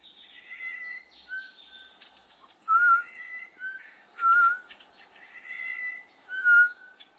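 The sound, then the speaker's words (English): A person whistles, imitating a Woodward's batis over a recording of its song. Clear, pure whistled notes repeat every second or two, loud, layered with fainter birdlike phrases, with no talking. “I'm actually whistling over it as well as you can hear it.”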